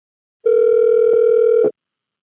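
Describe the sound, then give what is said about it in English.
A single steady electronic telephone ring tone, as heard by the caller on an outgoing follow-up call to a friend in Canada, lasting just over a second. It is loud and clear, with silence before and after and no voices. “Here, I'm just going to play the audio from that follow-up phone call I made”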